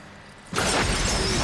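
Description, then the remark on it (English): A brief quiet gives way to a sudden, loud explosion from a Keanu Reeves film, a wide roaring blast that stays heavy and rumbling to the end without fading. “Great fucking explosion.”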